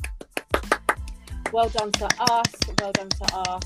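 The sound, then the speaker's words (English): A brief round of hand clapping from a couple of people, quick irregular claps running throughout, joined halfway by cheerful voices whooping or laughing over the applause. “I think we should do a little round of applause.”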